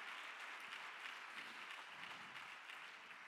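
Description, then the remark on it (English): A church audience applauds its pastor steadily: a dense, even wash of many hands clapping at once with no pauses, sustained and fairly loud throughout. “If you love your pastor, would you clap your hands and get loud?”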